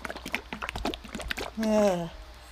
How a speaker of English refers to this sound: Oh yeah, mildly thick white tea. Right. And give it a shake. Give our listeners a listen.